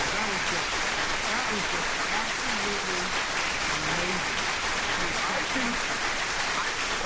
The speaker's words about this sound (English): I got to give you another round of applause.